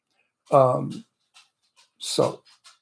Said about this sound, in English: They steal your heart, these little things. And I never liked little dogs. I always had big dogs.